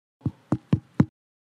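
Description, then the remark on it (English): Four evenly spaced knocks on a wooden door, firm, with a dull low thud to each rap and silence after the last one. “I hear a knock on the door.”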